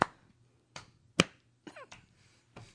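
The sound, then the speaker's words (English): A few scattered, sharp claps ring out at uneven intervals, about six in all, fairly loud, with quiet gaps between them and no voices; just two people clapping in a crowd of hundreds. “The fading, non-clapping. Just two in a crowd, right? Two in a crowd of hundreds. Can be heard.”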